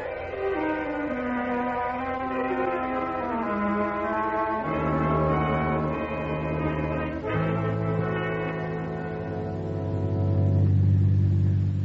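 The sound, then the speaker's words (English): A car engine drones steadily as the vehicle cruises along, its hum shifting pitch in a few stepped changes and swelling slightly louder near the end, with no voices. “we've cruised up and down this road for 20 miles and still no sign of where any car turned off up in the woods.”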